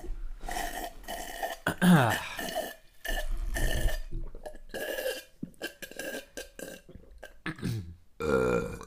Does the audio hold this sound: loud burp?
yes